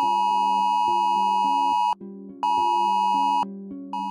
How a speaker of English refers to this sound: So, have you ever wondered why emergency alerts like the Amber Alert are able to sound on your phone even if it's in silent or sleep mode?